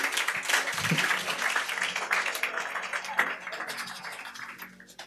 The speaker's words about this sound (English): Clap for Jesus.